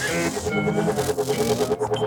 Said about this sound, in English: here's that helicopter whirl from when it goes into the second verse. Did you ever clock this? Did you know that was there?